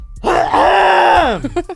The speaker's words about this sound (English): I was just doing my intro, and as I tried to inhale, I'm like, do you hear it? Could you hear it before? I feel like I was wheezing. I got to, like, clear my throat.